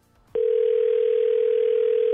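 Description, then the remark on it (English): A telephone line tone sounds through the receiver as a call is placed to a woman, starting abruptly after a brief moment of faint noise and then holding steady and loud without a break. “then we are going to call her with you listening on the phone.”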